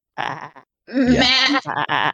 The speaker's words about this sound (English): I mean, you can hear sheep going, bah.